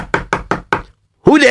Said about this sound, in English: Okay, let me knock on the door.